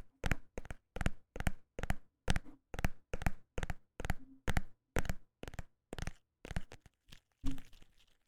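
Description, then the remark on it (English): A phone case being handled and tapped in a quick, steady series of about twenty sharp clicks and crackles that sound wet, slowing slightly toward the end, with no talking. “Why on earth does my phone case sound like that?”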